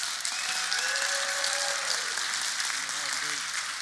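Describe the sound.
An audience at Riverbend claps steadily for about four seconds to vote for a contest winner, a dense, even wash of hand claps with a few voices calling or whooping over it.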